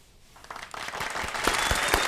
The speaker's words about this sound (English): We love to hear the claps. We take snaps and everything.